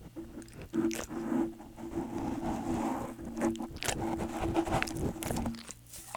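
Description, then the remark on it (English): A dog named Dutch chews and licks at its paws with a microphone held up to it: a steady stream of wet, squishy smacks and crunchy clicks in an irregular rhythm, moderately loud, with no talking. “You're gonna try and eat it again.”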